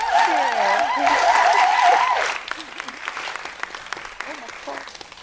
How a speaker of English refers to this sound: So thank you so much. I think we want to give them another round of applause.